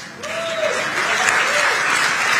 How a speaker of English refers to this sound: And again, the actor that he is, he pauses to let them clap for him. He pauses to let them show him the love he seeks. He pauses to say, I just said something that you should applaud for, and then people start applauding.